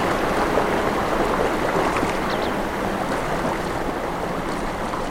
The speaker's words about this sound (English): So rather than confronting them, I prefer to swim through the river to the other side to enter the lake.